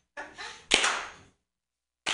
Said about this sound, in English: Oh, it's a slow clap. Oh, it's a slow clap, ladies and gentlemen. Everyone's jumping in.